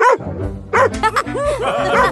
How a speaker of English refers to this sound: This fuzzy little fellow needs a name. I know. Fuzzy. Fuzzy the dog.